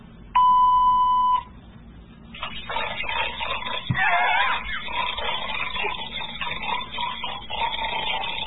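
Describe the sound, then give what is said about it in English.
A single loud answering machine beep, one steady electronic tone held for about a second, followed after a short pause by a continuous stretch of dense, muffled background noise. “Anyway, leave your message, and when you hear the beep, and I'll get right back to you.”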